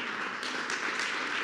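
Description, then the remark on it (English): A crowd claps steadily for a preacher during a sermon, a dense wash of many hands smacking together at a moderate, even level throughout, with no voices heard. “Today, right now, I'm just going to preach over here because they like to clap for me.”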